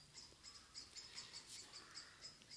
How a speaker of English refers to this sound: There's a sound vibration coming through the air. There's a bird out there going and the vibration from that comes through the air, hits the ear.